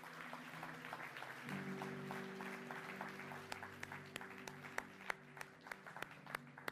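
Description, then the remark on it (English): A church audience claps and applauds steadily for the mothers at a morning service, with a low sustained tone underneath; individual sharp claps stand out more toward the end as the applause thins. “Come on, give the moms a clap this morning.”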